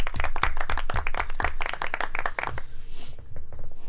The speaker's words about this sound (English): So, little golf clap for both those horses.